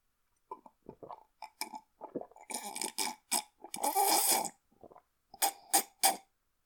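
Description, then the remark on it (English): Slurping sips of hot coffee, a series of short wet mouth noises with a longer noisy slurp in the middle, loud, no talking. “I'm going to take another sip of coffee.”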